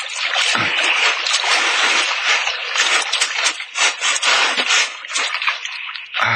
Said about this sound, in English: I'll hold on tight so you can pull the boat ashore after us.